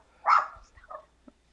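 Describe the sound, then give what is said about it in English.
Dogs in a building barking somewhat faintly: one sharp, strong bark followed by a few shorter, quieter yaps trailing off within a second or so, with no one talking. “All the dogs in our building are freaking out.”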